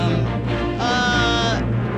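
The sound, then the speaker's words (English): Loud, dense orchestral music with sustained brassy tones and a swelling, vibrato-rich phrase in the middle: the theme of the television series Dynasty II: The Colbys, playing on its own throughout. “It is Dynasty 2, the Colbys.”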